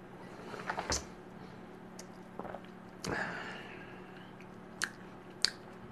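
Someone takes a quiet sip of Ancient Age rye whiskey with water added, from a Glencairn glass, and tastes it, with soft slurps, wet lip smacks and a few sharp mouth clicks, no talking.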